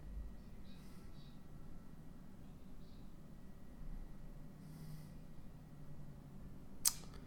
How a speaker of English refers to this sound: Seems unnecessarily threatening to just cut off some zip ties, you know?